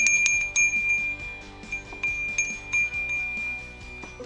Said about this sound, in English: Looking forward to meeting him now, just walking up. I'm just going to ring his bell here.